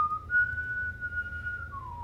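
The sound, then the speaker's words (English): Someone whistles a short phrase: a clear, steady note that steps slightly higher and holds, then slides downward at the end, over a low background rumble. “Whistle the fucking last note.”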